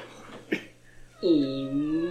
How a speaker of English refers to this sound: It's the most cat-like noise.